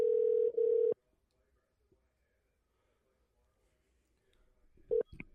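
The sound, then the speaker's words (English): A steady telephone tone sounds for about a second, then near-silence with faint background noise, followed by a couple of short, sharp electronic beeps like phone keypad tones, as a phone call is being made. “Here's the phone call that I made the other day.”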